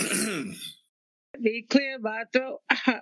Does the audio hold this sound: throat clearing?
yes